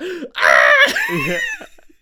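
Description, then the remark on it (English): A single voice mimics the scream of a man in a movie falling while holding a boot: a loud, strained cry with a warbling, dropping pitch that lasts just over a second, preceded by a short breathy sound. “And the best part, when he falls, he's holding the boot. He's just holding it like it's going to do something. And that scream is like,”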